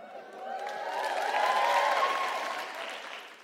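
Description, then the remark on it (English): An audience claps steadily for a few seconds for a man who has called a few people out at work, the dense patter swelling toward the middle and easing off, with a few cheers and whoops mixed into the applause. “That's previous applauding.”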